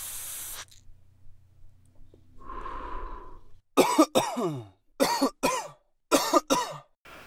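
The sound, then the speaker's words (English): A lighter-like hiss and a drawn inhale of weed smoke on 420 give way to a burst of harsh, rasping coughs, four or five hacking fits in an uneven rhythm, loud and strained with no talking. “So I'm smoking on that Chavin pack. You know what I'm saying? That shit'll choke you out.”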